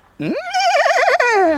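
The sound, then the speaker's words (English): A horse neighs once, loud, its cry rising sharply, wavering in a shaky tremolo, then sliding down as it fades out. “Yes, bring it on with the horse's confirmation.”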